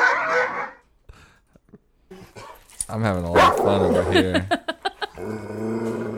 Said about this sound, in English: Oh, God. Does that sound like your dog? Is that like a, what was that? I don't know. It was a Halloween dog. It sounded like a motorcycle. Yeah. It could have been. Is it a wood chipper? A dog. Yeah, they're all scary dogs.